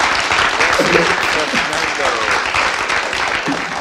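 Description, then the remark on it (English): Steady, dense clapping from a group fills the whole stretch, loud and even, with a few brief voices calling out over the applause, given as a round of applause for someone who scored 10 points. “Yay, a round of applause.”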